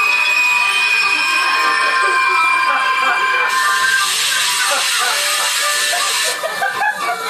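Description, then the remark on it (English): A loud, shrill metallic squeal of train brakes as the train comes to a sudden halt, sustained piercing tones that swell into a harsher grinding surge midway before easing off near the end. “But our revelers are abruptly awoken when the train screeches to a sudden halt.”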